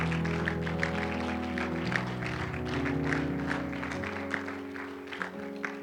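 An audience claps steadily for several seconds, a dense patter of many hands, while sustained low organ or keyboard chords hold underneath. No one speaks.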